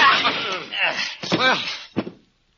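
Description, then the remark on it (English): A man is struck with a chair: a couple of sharp, loud thwacks amid strained grunts and groaning voices, then a final thud before the sound cuts to silence. “You were very handy with that chair. How come you hit him?”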